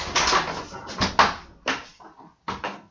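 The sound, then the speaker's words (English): A door shuts and is left locked, with a series of solid wooden thuds and rattles, about five clunks spread unevenly over a few seconds, each ringing briefly before fading. No one speaks. “Door's locked. I can't go inside.”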